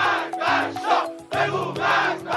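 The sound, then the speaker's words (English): A large crowd chants the slogan "Death to the Shah" in unison, loud rhythmic bursts of many shouting voices repeating in a steady cadence, energetic. “The crowd shouted, "Death to the Shah."”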